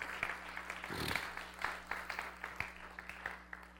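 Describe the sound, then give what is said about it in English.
An audience claps hands together in a steady, dense wash of applause for the Lord in the morning, many hands at once with sharper individual claps popping out, moderately loud, with no speech over it. “Come on, let's give the Lord a great big hand clap this morning.”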